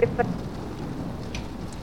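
Heavy rain from a storm more than 30 miles wide pours down in a steady, dense hiss with a low rumbling undertone, and a couple of brief tonal blips sound right at the start.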